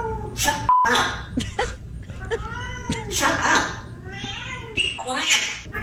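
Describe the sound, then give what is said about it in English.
A cat meows loudly and repeatedly in drawn-out, wailing cries while a man shouts "Shut up" and "Quiet" at it in between, with a brief electronic beep near the start. “He's like, then he calls the cat a bleeper.”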